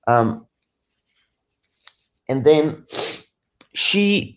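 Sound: blowing nose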